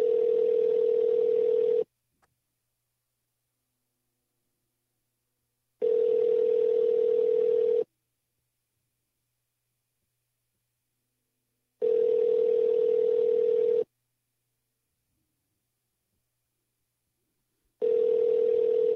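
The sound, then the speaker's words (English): An outgoing phone call rings without being answered: a steady electronic ringback tone sounds in four two-second bursts, separated by even pauses of silence, with no voices. “He did not answer my call.”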